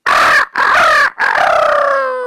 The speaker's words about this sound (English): And so the next day came. The rooster crowed.